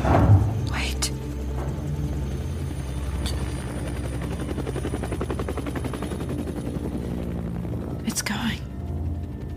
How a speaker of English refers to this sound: helicopter's going.